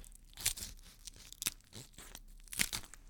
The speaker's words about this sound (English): The Salty King handed Jeremy a small blade with a flock of seagulls carved into the handle. Jeremy took the knife and cut off the seagull's head.